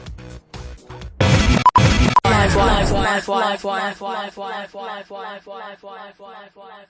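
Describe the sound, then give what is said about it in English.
Music playing abruptly breaks into a loud burst of glitchy, distorted noise, then a tiny fragment loops over and over in a fast stutter, like a music player crashing mid-song. “The music player just crashed, and it's fine.”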